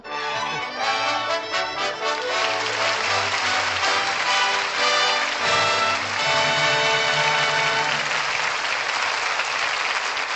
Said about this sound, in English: Ray Milland and Maureen O'Sullivan are back at the footlights. And that applause says they're guilty. Guilty of a fine performance.